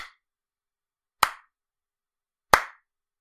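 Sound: golf clap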